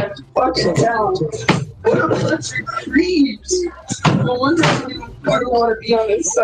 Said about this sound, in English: You can hear him slamming doors and drawers and stuff. I think that's what got the cops' attention.